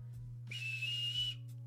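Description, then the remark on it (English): One short, shrill referee's whistle blast lasting under a second, a steady piercing tone with breathy air around it, heard alone over a low background hum. “Somebody should have had a referee's whistle.”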